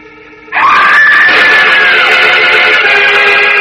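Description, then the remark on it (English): A girl lets out a single long, horrified scream that bursts in loudly, holding a high, piercing pitch for several seconds without a break, at night in a city as a tall, dark-cloaked figure towers over her with a steel-bladed knife raised. “The girl's horrified scream rises clearly through the night air, reaching the keen ears of Superman flying high above the city.”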